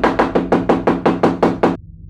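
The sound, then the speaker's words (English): Someone pounds rapidly on an exit door, about ten loud, heavy blows in a fast, steady rhythm, then the hammering abruptly stops into near silence. “I pushed myself against the exit door, hammering.”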